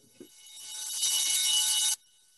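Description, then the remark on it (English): An electric bell rings in one continuous, harsh metallic clatter for under two seconds, swelling louder before cutting off abruptly. No one speaks. “Yeah, that's our bell.”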